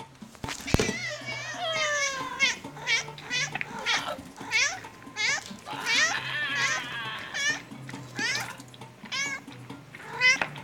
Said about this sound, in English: When suddenly, the cat came back. My best kitty friend, Fartosaurus, leaps into frame. going directly for the face of the fishman.